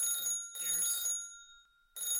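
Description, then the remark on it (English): An electronic telephone rings in short repeated bursts, a bright, shrill warbling tone that cuts off briefly between rings before starting again. No one speaks. “God damn it, guys, just answer the fucking phone!”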